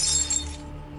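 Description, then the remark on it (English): A glass of Johnny Walker whisky is knocked onto the ground and shatters in a single bright, crashing burst, with sharp glassy tinkling that rings briefly before fading into quiet. “I reach for my glass of Johnny Walker, but my movements are uncoordinated and I knock it onto the ground.”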